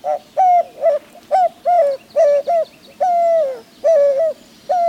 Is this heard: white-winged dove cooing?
yes